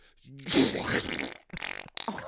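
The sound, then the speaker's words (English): A voice makes a wet, splattering, sloppy noise, a short burst of squelchy blubbering with a brief pause and a second sputter, imitating the sound of a person's brain falling out. “Oh, that did sound like a brain fell out.”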